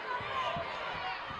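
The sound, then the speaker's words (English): A basketball being dribbled on a court during a game involving the Auburn Tigers, as player Hobbs brings it up out front with a left-handed dribble: several dull bounces in a steady rhythm, half-buried under a loud, constant arena crowd roar. “Hobbs out front, left-handed dribble, working on Brooke Holman.”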